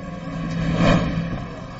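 A car entering the United States at the border, refusing to stop for inspection and going too fast, speeds past, its engine noise swelling quickly to a peak and then fading away over a couple of seconds, with a steady engine hum throughout and no voices.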